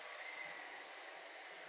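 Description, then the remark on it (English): A train rolls past, a steady, fairly quiet rushing rumble that holds evenly throughout, with no voices over it. “Let's let this train go past.”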